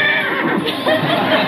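A horse neighs loudly, one long shrill whinny with a quavering, wavering pitch that fills the whole short moment, with no talking.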